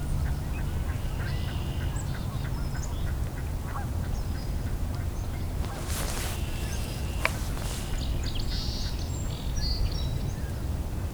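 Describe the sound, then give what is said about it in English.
Migrating mallards cackle and quack over a steady low outdoor rumble, with a brief burst of splashing and flapping midway as the birds take off, plus faint songbird chirps. “You can hear some mallards cackling. Oh, they're taking off, all right.”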